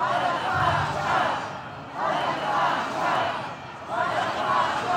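A large protest crowd of Israelis packed in a Tel Aviv square chants loudly in unison for the resignation of Netanyahu's government, repeating "Resignation now" in a steady rhythm, with each call rising and falling about three times.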